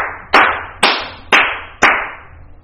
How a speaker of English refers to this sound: It's time that we give it a clap, you know?